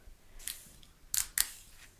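A chilled pressurized drink container, labelled as having contents under pressure, is opened: a faint click, then two short, sharp hissing pops of released gas in quick succession, with no one speaking.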